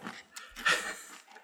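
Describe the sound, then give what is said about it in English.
Loud, wet crunching of Grape Nuts cereal with milk poured on top, right up against the mic, a quick run of gritty chewing bursts with heavy breathing mixed in, and no talking. “I want you to save that sound bit of you crunching.”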